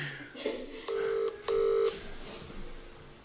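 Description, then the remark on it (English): A telephone ringing tone sounds in two short, steady electronic bursts close together as a call is placed, clear and fairly loud over a faint hiss of background noise. “We'll keep dialing our fool.”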